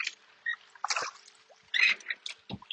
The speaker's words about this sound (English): Right now, I'm not sure if you guys can hear the blades of the water swishing and the blades sliding into the water.